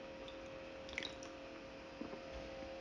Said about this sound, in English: wait, quick sip of beer.